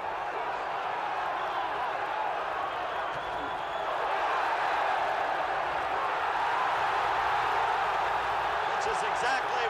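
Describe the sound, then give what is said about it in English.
A boxing arena crowd cheering near the end of round two of Hagler against Mitchell, in a dense, continuous roar of many voices that swells louder partway through and stays high, with no single voice standing out. “and the crowd is responding.”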